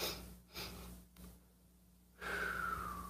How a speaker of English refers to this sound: Two sniffs and an exhale.